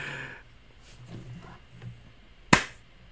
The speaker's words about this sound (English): No, that was one clap with a bunch of booty slaps because it's a boogie in your butt. So it was I was tapping the butt.